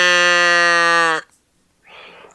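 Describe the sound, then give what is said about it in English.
A person imitates a cow mooing with one loud, steady, drawn-out low note lasting about a second, then it cuts off and a short breathy sound follows. “Moo us in for the first time, please”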